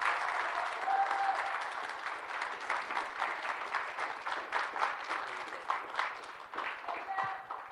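A room full of people claps steadily for several seconds, a dense patter of hands that swells and holds at moderate loudness, with a few louder claps standing out near the end.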